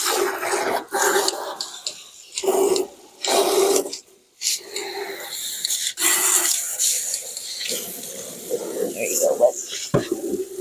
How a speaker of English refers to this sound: There's just a tiny little bit of water in there. All right. I'll do it. So apparently Ovation wants me to fill up the water tub, which is fine.